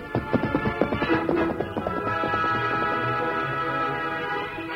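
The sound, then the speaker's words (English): Rhythmic hoofbeats of the Lone Ranger's saddled horse Silver clatter briskly over orchestral music as he rides off to find Tonto, then fade away after a couple of seconds as the music swells and carries on alone. “Finally, he saddled the great horse Silver.”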